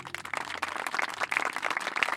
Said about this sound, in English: Her presentation ends with the whole class in applause.